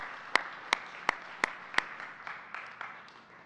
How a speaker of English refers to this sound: Let's stand together as a community. Can y'all cheer again for our brave friends who came on stage?